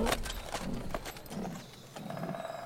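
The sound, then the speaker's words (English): The hooves of a strong donkey clip-clop at an unhurried, steady pace as it is ridden home to Catania. Each knock is sharp, over a low rumbling background with no voices. “he bought a good strong donkey, and mounting on its back, he rode home to Catania.”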